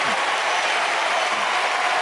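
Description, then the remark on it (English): A standing ovation shown on the C-SPAN feed: dense, sustained applause from a large standing crowd, a steady loud wash of many hands clapping at once with no letup and no voices over it. “They're not stopping clapping. They're standing up.”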